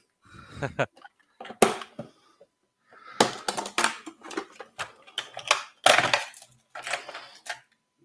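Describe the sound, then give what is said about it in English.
Metallic clinking and clattering as coins are rummaged through in a box, in irregular bursts of jangling that come and go over several seconds with brief pauses between. “I had to grab my box full of coins.”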